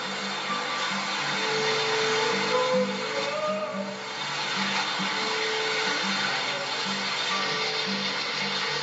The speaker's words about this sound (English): This is the first place where the water can be seen. And this is where the water starts running along the Hezekiah tunnel all the way to the Pool of Siloam.